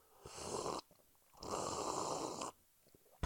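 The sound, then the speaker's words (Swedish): Two long, loud slurps of coffee from an Arsenal Göteborg 10-year coffee mug, each a noisy, hissy intake of air and liquid lasting around a second, separated by a short quiet pause. No one speaks. “Hör du hur jag sörpla?”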